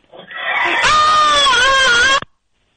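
A single loud, shrill scream of a rabid horse attacking. It is harsh and holds for about two seconds with a wavering pitch before cutting off abruptly into silence.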